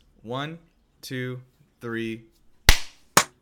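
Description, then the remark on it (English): A voice counts off three beats, then a group claps in unison to sync up a recording: one loud, sharp burst followed moments later by a second, shorter, slightly ragged clap. “Okay, I'm just gonna count down 1, 2, 3, and after three, like on go, everybody clap, okay?”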